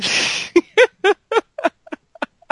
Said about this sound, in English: Okay, rubber duck.